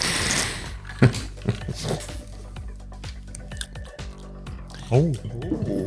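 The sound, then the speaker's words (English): Tonic water pours into a glass with an opening fizzy hiss, small splashes and drips, and a gurgling rise as the glass fills. Brief voice sounds occur alongside. “Tonic. Oh, I'm sorry. Water.”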